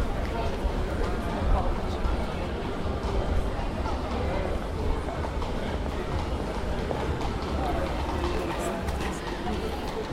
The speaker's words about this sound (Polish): No i tu już słychać, że idziemy do rynku, bo jest naprawdę gwarno.